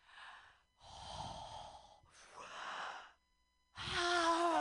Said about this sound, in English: Let me finish my breathing exercises.